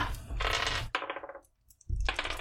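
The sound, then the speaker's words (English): Dice clatter and tumble across a hard tabletop, a rattling burst that settles, a brief pause, then another loud roll. No voices. “Oh. Wrong dice.”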